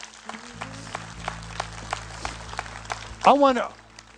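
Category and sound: crowd, audience hand clapping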